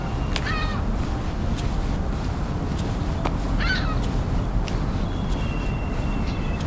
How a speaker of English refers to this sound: a few gulls flying over. So ring-billed gulls.